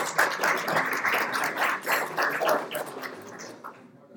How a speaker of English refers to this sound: I should thank the Legion Canners who made it with the lunch. Join me in the applause.